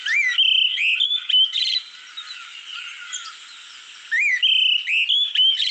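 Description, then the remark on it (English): An olive thrush sings clear, fluting whistled phrases in two bursts, separated by a softer, scratchy twittering passage in the middle; there is no talking. “So now I'm going to play you the olive thrush.”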